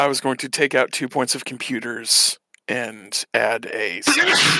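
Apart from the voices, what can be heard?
sneeze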